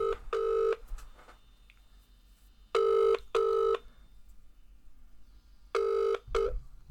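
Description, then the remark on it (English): An outgoing phone call's ringing tone: a steady electronic double burst repeating about every three seconds, heard three times with the last cut short, fairly loud and clear with no voices. “Yeah, it's ringing.”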